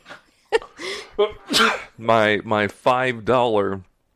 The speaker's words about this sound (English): I'm going to sneeze now.